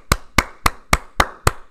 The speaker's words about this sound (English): Round of applause for Mr. Josh Odoro.